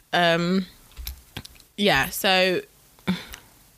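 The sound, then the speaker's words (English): A few scattered clicks of typing on a computer keyboard, brief, falling between loud wordless vocal sounds from a voice. “My keyboard isn't working.”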